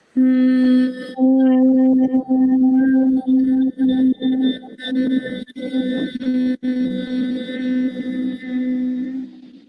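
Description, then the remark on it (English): A steady, sustained vocal hum on one mid-pitched note, fairly loud, holding for several seconds with a brief breath break near the start and no speech; humming to awaken the heart chakra during a meditation. “And then again, close the eyes, bring your awareness into your heart space, breathe into it, and then awaken it with the hum.”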